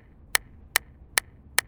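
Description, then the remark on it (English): Four loud, crisp hand claps break the silence of a quiet class, ringing out in a steady, even rhythm, each one a sharp snap with a short pause before the next, with no voices. “Suddenly, Miss Anderson broke the silence with a loud clapping of her hands.”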